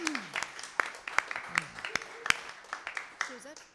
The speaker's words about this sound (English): Let's give our artists another round of applause.